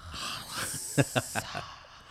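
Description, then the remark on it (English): A person makes a breathy, hissing sound imitating a snake, with a steady airy hiss broken by four quick, sharp bursts in a row. The voice is moderately loud. “It's like the snake.”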